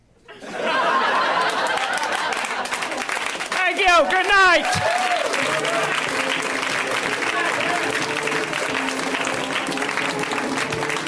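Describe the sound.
A crowd at a stand-up comedy show in L.A. bursts into sustained applause after a comic's set, steady dense clapping mixed with cheers and laughter, while a voice calls out over it briefly before the clapping carries on loudly to the end.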